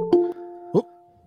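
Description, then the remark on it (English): A doorbell chimes two ringing tones, ding then dong, each note sustaining and fading slowly. Clear, with no talking over it. “There's a doorbell?”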